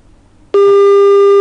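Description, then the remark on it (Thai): After a moment of near silence, a loud, steady telephone call tone for the third incoming call on a YouTube show cuts in abruptly and holds as one unbroken electronic beep until the end, with no voices. “เสียงโทรศัพท์ดังมากครับ”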